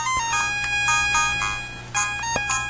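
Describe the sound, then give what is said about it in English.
A retro 8-bit chiptune melody from the Angry Birds game plays steadily, bright square-wave notes stepping between pitches with short clicks, no voices, fairly loud throughout. “Let's launch Angry Birds and see what that looks like. It says Angry Birds, select episode. Wow, that couldn't get more annoying sounding, could it?”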